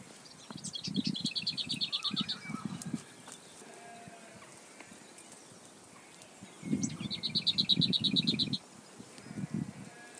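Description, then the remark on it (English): A lesser whitethroat, about 300 yards from the recordist's home, sings two short bursts of fast, dry, high-pitched rattling notes a few seconds apart, with lower bleating animal sounds overlapping beneath each burst. “And it's a lesser white throat.”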